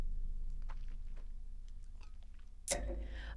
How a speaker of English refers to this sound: I'm going to have one more sip of my kitty elixir here.